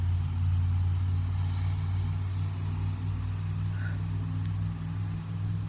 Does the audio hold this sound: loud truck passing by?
yes